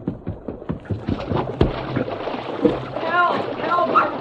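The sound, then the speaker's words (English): Churning, splashing water rushes steadily as the Lone Ranger swims through a strong stream current toward boys in the water above a waterfall, with choppy thrashes early on and a voice crying out over the flow near the end. “Although the Lone Ranger had entered the stream above the position of the boys in the water, he had to fight the strong current in order to keep from being carried past them.”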